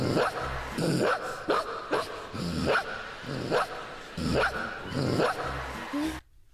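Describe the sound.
A small child imitates a dog, letting out a rapid string of about a dozen loud yapping barks in short bursts, stopping abruptly at the end.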